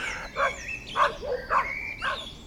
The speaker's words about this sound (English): Biophony, which is the sound you're going to hear from nature, like animals, barking, dogs, birds.